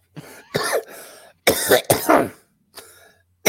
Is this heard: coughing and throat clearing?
yes